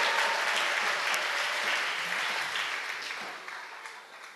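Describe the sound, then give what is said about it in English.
A crowd of people claps together for the Lord in sustained, dense applause that fills the space, gradually fading toward the end, with no speech over it. “Let's clap for the Lord.”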